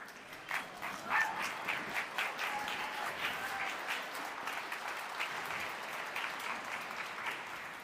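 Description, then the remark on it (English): A crowd applauds steadily for several seconds, welcoming guests onto a stage, a dense wash of many hands clapping at once, fairly loud and sustained with a few brief faint whoops rising above it. “And help me give a very warm welcome and round of applause to our guests.”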